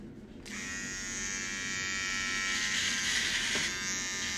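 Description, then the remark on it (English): Electric hair clippers switch on after a brief pause and buzz steadily and loudly as a man's hair is cut, a continuous motorized drone with a bright, whining edge and no talking. “And we're going to cut my hair. You will not be able to see this, but, you know, enjoy the sounds.”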